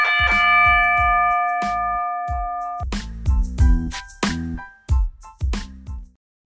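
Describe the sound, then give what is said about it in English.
A wrestling ring bell rings loudly, struck about a dozen times in a rapid, uneven series. A bright metallic ring hangs over the first few hits before fading. “With that said, let's get this show started. Ring the bell.”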